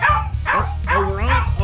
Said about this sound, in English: Somebody better shut that dog up. Shut him up. Shut him up. Shut him up. I'm going to drop kick him.